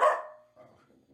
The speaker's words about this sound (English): Hey, dogs, stop fighting.